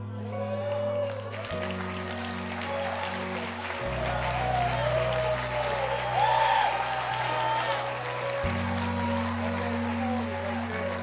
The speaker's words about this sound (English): Debt free. Oh, you all clap now. But when pastor goes, debt free, suddenly your wallets and purses get locked up.